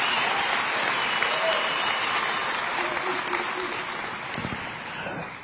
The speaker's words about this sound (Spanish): ¡Aplausos!